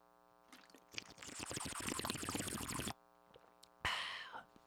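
Water pours steadily for about two seconds, then after a short pause comes a brief, loud sip or gulp of drinking. No one speaks.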